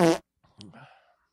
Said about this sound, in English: I cannot remember if we have a baby name song for the segment. If we do, please play it. And if we don't, please insert a fart.